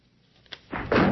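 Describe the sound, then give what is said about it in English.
A door being knocked down: a short thud, then two heavy, loud crashing impacts, the last one ringing out. No one speaks. “The pot police are coming to a door near you. Going to knock it down.”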